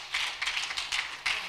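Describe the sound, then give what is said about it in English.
An audience claps together in a dense, steady patter of many hands, with a few louder surges rising out of the crackling wash. No one speaks. “Yes, clap, absolutely.”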